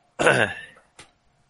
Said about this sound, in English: Why is everybody coughing the moment we mention lungs? What's happening?